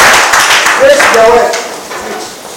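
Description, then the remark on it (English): A church audience applauds for Jesus after an opening prayer, before being seated, a dense crackling wash of many hands clapping with a few voices calling out over it, the applause gradually thinning and fading toward the end. “Why don't you clap for Jesus and you may be seated.”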